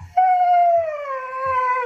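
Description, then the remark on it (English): A dog with both paws in an empty water bowl, wanting water, lets out one long, loud, drawn-out whine that rises into a howl-like tone, holding steady before sliding gradually lower, with a few soft low thumps underneath. “This dog just really wants water and currently has both his paws in the empty water bowl, screaming for water.”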